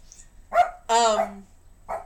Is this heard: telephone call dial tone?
no